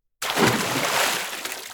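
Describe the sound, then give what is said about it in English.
A burst of loud splashing water starts abruptly and churns steadily for over a second, a dense wet sloshing like objects plunging into water, with no voices. “Before they could get off of their ship, however, loud splashing sounds got their attention. Something was dropping in the water near the boat.”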